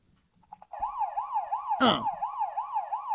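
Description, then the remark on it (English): A toy siren switches on and wails steadily in quick, regular up-and-down warbles, fairly loud, with a brief clattering burst partway through. “What's up with that siren in the background?”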